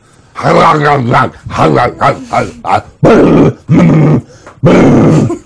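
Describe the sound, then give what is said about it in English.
A voice imitates wolves growling and snarling over food as they posture over who gets to eat: throaty, voiced grunts at first, then three harsh, raspy growls in quick succession, loud. “They're posturing over who gets to eat what and who gets to eat.”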